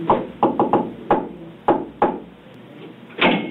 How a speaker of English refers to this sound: Were you knocking? Yes, sir. Yes.